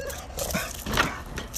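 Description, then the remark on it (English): A dog barks at a cat outside in front of a house, in a few short, sharp bursts spread across a second and a half, with the loudest yelp near the middle, over a steady low background hum. “So she's snapping because she sees a cat.”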